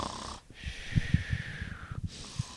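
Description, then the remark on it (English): A person fakes a snore: one drawn-out, wheezy inhale with a rough, fluttering rattle underneath, fairly quiet and with no talking. “I should probably just get a nice snoring sound effect and plug that in instead.”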